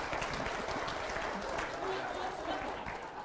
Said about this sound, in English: Give both these men a round of applause if you would. Thank you, gentlemen. Appreciate your help.